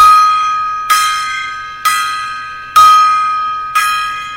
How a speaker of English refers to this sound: We salute. I'm going to give like a five gong salute